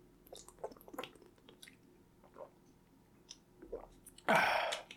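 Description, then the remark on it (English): Someone drinks water, with soft wet sips and swallowing clicks, then a louder breathy gulp or exhale at the end. No one speaks. “Sorry, I need water.”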